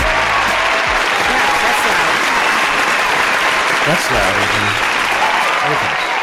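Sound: loud audience applause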